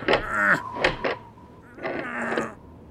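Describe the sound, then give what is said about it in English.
The handle of a counting house door, frozen shut in the cold, being jiggled, giving several creaky squeaks and rattling scrapes in irregular bursts, with short pauses between the attempts. “Maybe if I just fiddle and futz with the handle. So the mayor fiddled and futzed.”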